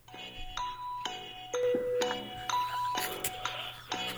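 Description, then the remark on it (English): A bright electronic game-show chime plays during a quiz round, a rapid run of bell-like tones, one roughly every half second for about four seconds, fairly loud over a low steady hum, with no talking. “I got a chime, bro.”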